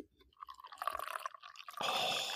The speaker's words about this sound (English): He's pouring coffee right now. Pouring coffee. Can you hear it? Oh, you ready? Listen for it.